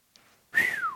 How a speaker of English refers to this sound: Whew. My lips are too messed up. I can't whistle. That's no joke.